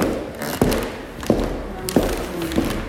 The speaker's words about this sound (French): Vous venez d'entendre les pas et les explications